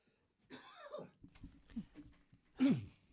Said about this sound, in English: All choked up for that, huh? Something got stuck in there. Well, I'll let you clear your throat.